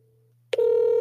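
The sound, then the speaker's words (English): A faint low hum, then a sharp click followed by a single loud, steady electronic telephone keypad tone that holds without a break to the end, as a phone call is placed to reach someone. No voices are heard. “Just get him on the phone right now, see what he's saying.”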